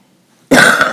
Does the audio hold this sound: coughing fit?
yes